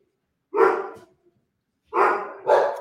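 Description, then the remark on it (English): Dogs barking loudly: one sharp bark, a pause of about a second, then two more barks in quick succession, with no talking. “Hold on one second. I have to kill my dogs.”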